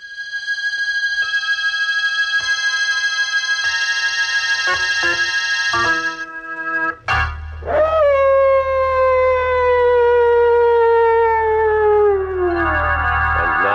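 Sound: dogs howling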